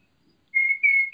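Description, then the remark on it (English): A man whistles high, thin kee-kee notes imitating a young turkey without a turkey call, in October while getting ready to set tree stands: a quiet pause, then two sustained whistles and the start of a third, clear and fairly loud. “You're going to hear me doing kikis just with my whistle. That's me whistling.”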